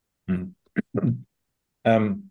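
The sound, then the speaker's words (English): A person gives a few short, throaty coughs in quick succession, then one more after a brief pause, with no talking around them. “Sorry, I just was coughing there.”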